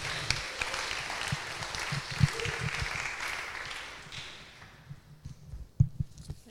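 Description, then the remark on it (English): An audience applauds to welcome Bishop Jackie Searle, Bishop of Crediton, with dense, steady clapping that gradually thins and fades out, leaving a few scattered claps and thumps near the end. “We welcome Bishop Jackie with a round of applause.”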